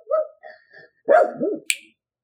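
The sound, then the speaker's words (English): A dog running around barks a few times, a couple of short yips followed by two louder arching barks and a sharp high yelp at the end. “We have a dog running around here.”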